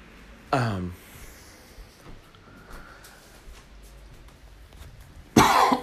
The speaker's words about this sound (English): It would not be an episode without me coughing.